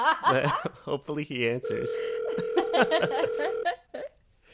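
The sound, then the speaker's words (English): An outgoing phone call rings with a steady electronic ringback tone lasting about two seconds, while voices and laughter sound around it before the line goes quiet. “All right, let's him on the phone. Let's call right now. Hopefully he answers.”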